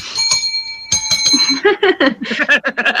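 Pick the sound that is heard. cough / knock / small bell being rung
small bell being rung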